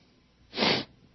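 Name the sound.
sniffling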